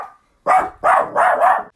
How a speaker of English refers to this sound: Okay, small pause for dog yelps and barks. I guess I don't like this theme.